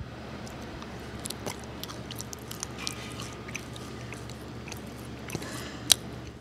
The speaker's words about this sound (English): That chewing is obviously going to combine saliva into the bread. Saliva is body temperature, so it's warmer than room temperature. So as you're warming the bread, it's going to become more flavorful.